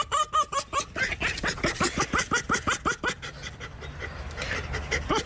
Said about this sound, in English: Did you know that foxes actually can laugh? Listen to this.